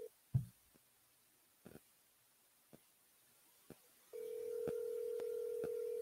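A handful of sparse clicks from a phone dialing a cell phone number, then a steady, unbroken tone comes in and holds to the end, a few faint ticks still sounding under it. No one speaks.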